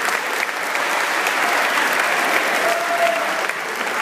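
A crowd applauds steadily throughout, a dense, sustained wash of clapping hands at even loudness, with a brief faint whistle-like tone partway through.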